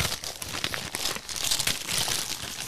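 Red Santa-print Christmas wrapping paper being torn open and crumpled as a present is unwrapped, a continuous crackle and rip lasting a few seconds with no one speaking.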